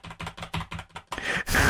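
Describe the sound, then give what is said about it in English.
Rapid typing on a squishy dome computer keyboard, a quick run of soft clacks, ending in a louder burst of several keystrokes together, with no voices. “for some reason, we got to these dome keyboards, which are the ones that when you type, it feels really squishy.”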